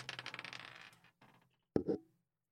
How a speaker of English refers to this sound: I dropped the dice.